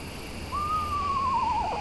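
A screech owl gives a single whinnying call, a clear whistled note that slowly falls and breaks into a quavering trill at the end, carrying over a steady hiss of background noise.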